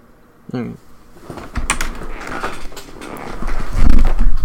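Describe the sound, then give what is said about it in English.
A door is opened to let a dog inside, with a few sharp clunks and rattles, followed by shuffling, thumping movement and a low rumble as the dog comes through, with a brief vocal sound early on. “I need to let the dog in.”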